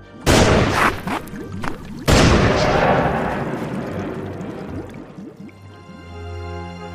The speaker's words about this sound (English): Two gunshots ring out in the empty streets of Driftwood Gulch. Did Deputy Guppy outdraw the Caviar Kid? Or is the Caviar Kid truly the fastest draw in the West?